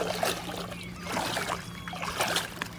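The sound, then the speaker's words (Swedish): Gentle water laps and splashes in a continuous, uneven wash at a lakeside bathing spot in the small village of Linanäs on Ljusterö, where people have come for a morning swim, with a low steady hum underneath and no voices. “Ja, nu har jag kommit ner till vattnet.”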